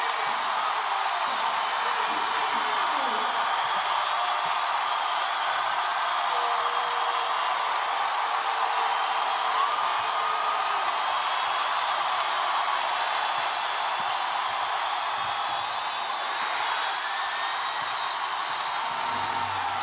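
A basketball crowd roars steadily and loudly for about twenty seconds as Caitlin Clark becomes the all-time leading scorer in women's college basketball in a game against Michigan, a dense, unbroken wash of cheering and screaming that never fades, with no clear voices standing out.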